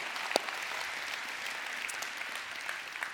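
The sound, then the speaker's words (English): A crowd applauds steadily, the dense patter of many hands clapping at moderate volume, with one sharper clap standing out near the start. “You can clap for that.”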